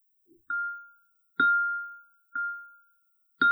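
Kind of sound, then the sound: signal or alarm, bell ringing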